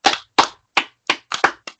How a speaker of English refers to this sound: But let's clap it up for our Mountaineers.